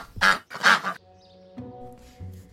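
A duck gives two loud, raspy quacks in quick succession, followed by a quieter low droning tone with no one speaking.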